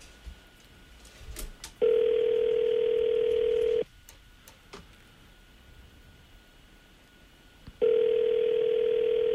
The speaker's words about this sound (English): Let's see if this is going to ring them. Oh, it's ringing. Hang on.